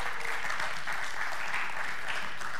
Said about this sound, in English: Let's cheer them on and the teachers as they leave. Woo!